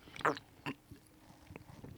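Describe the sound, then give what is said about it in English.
Two short, loud slurping sips from a can of Modelo beer, followed by a few faint swallowing clicks and soft mouth noises. No one speaks. “But yeah, let me take a sip of my Modelo.”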